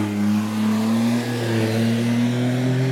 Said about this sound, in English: Wow, I don't know if you heard that, but, well, you probably did because it's quite loud. That was a smart car. How can a smart car be that loud? Weird.